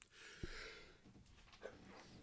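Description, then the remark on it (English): A single quick sneeze bursts out sharply near the start, followed by faint breathy, snuffling noise and a low background hiss with no talking. “My sneezes are loud and scary sometimes.”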